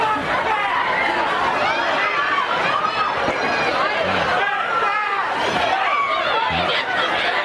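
A dense crowd of Black Friday shoppers fills the air with overlapping chatter and shouts, a steady, loud hubbub of many voices with no single speaker standing out.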